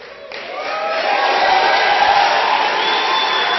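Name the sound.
audience cheering and applauding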